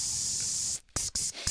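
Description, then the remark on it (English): An aerosol can of waterproofing spray, held about 8 inches away and sprayed onto a brown paper napkin, hisses in a steady, bright spray, stops briefly, then gives a few shorter bursts with tiny gaps between them. “Hold it about 8 inches away.”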